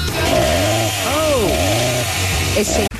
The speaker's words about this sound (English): Aussie, go get the chainsaw.